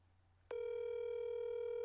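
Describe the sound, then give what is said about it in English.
A steady electronic ringing tone of an outgoing phone call begins abruptly after a short quiet pause and holds at an even, fairly loud pitch to the end, with no one speaking. “Let's see if we can find somebody else who will answer my... Oh, Zach will answer my phone in the middle of the day.”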